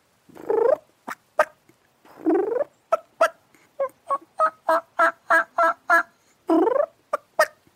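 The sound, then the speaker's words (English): Clear turkey purring and clucking imitated on a diaphragm mouth call: a slow sequence of rolling purrs broken by crisp, evenly spaced clucks, with no talking. “Most people can't call that good with a diaphragm.”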